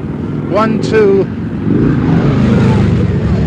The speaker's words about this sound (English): 1, 2, 3, 4 police on motor scooters. One demonstrator knocked down by a motor scooter policeman.